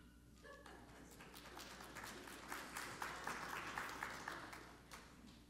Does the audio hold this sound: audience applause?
yes